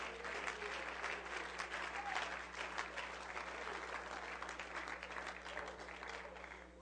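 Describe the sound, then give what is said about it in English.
A church audience claps hands to the Lord in praise, steady, sustained applause for several seconds, a dense wash of many overlapping claps at an even loudness, with faint crowd murmur beneath. “Come on, somebody clap your hands to the Lord.”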